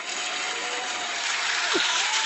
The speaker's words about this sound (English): Applause lah, applause.